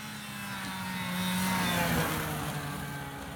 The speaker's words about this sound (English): And now that you have heard that engine audio, I will tell you that is an Arctic Cat Trail Cat from the early 70s. I think it was like a 200cc or something. It was a small snowmobile, but it was really our first experience with two-stroke.